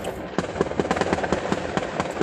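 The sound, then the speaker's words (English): A rapid, irregular string of sharp fireworks and gunshot pops crackles outside over a steady background hiss, a dozen or so bursts in about two seconds, moderately loud, with no talking. “Fireworks seeds and gunplay seeds, man.”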